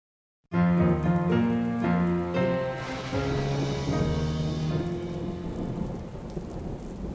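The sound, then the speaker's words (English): Heavy monsoon rain pours down steadily in Tucson, Arizona, in July, with loud, rolling thunder rumbling underneath, a dense wash of sound that starts abruptly and continues without voices. “The monsoon arrived in full force, making July one of the wettest in Tucson history.”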